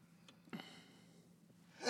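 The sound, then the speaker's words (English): A sneeze: a brief sharp breathy burst, a quiet stretch with a low hum, then a louder hissing sneeze rising at the very end. No one talks. “He's got like, I'm a sneezy.”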